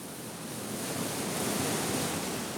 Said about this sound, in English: As the sea pounds the rocks around the Golden Gate Bridge, the salmon enter the bay en route to their breeding grounds.